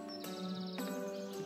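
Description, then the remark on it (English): A phone notification chime plays, with three bright electronic tones struck in quick succession, each sustaining briefly over a faint background hum, moderately loud. “I thought I had muted my phone.”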